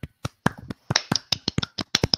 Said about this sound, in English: Oh, what were you clapping with there? What? I was clapping my hands. Okay. Well, what would you think? I don't know. It just sounded a little weird. Because I put my hands right next to the microphone.